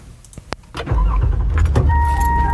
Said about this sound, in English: Off rip, starting the car.